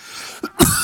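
A single sharp cough close to the microphone, preceded by a brief catch of breath, standing alone against faint background hiss with no talking.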